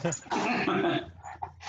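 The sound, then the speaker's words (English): A small miniature schnauzer dog whimpers and lets out a few high yips, with a short whiny burst followed by softer, fading cries. “What kind of dog? This is my grand puppy.”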